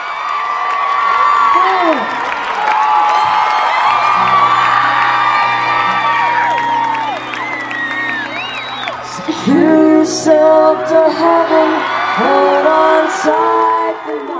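A large concert crowd of women screams and cheers continuously, high-pitched shrieks and whoops overlapping in a loud, sustained roar with scattered shouts rising above it.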